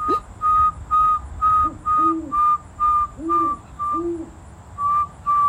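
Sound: pet bird chirping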